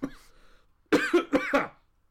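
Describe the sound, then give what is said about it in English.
A fairly loud fit of about four raspy coughs in rapid succession, preceded by a faint breath and followed by quiet; a real cough brought on by doing a Batman voice. “That one was a real cough from doing the Batman.”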